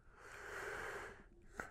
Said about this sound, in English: Forgive me for yawning.